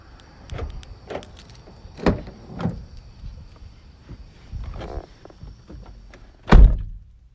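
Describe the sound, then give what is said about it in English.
Inside a car, a few soft knocks and shuffles lead to one loud, heavy door thunk near the end, with a faint thin electric whine, like a power window, running underneath. No one speaks. “I'm sitting in the car.”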